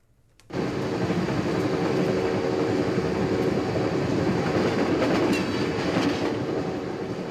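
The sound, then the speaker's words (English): A train rumbles steadily along the rails after a brief quiet start, a dense, loud rolling roar with faint rhythmic clatter and occasional higher metallic glints, no voices present. “We begin on a train with two strangers, one who wants to talk and the other who's not really interested.”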